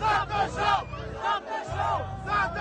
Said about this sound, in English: That's the crowd chanting, stop the show. Oh, wow. Yeah, see, if the crowd was telling me that, I'd be like, Yeah. Yeah. I will admit that this footage is being taken a bit further away from the stage. I don't know how much of the crowd was chanting